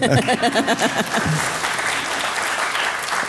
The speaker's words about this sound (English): And this is the part where you guys applaud for him.